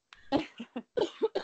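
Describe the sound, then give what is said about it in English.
A loud fit of coughing from a sick person: five or six harsh, rapid coughs in quick succession, with short gasps between them and no talking. “You guys, I'm sorry for all this coughing.”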